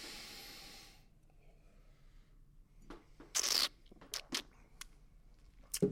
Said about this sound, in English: Well, maybe slightly polite, but have a sniff and a taste and see what you think of the inaugural Chateau Kermode.